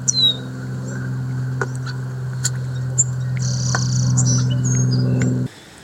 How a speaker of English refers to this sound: But I gotta give a shout out to the birds in the background. Beautiful.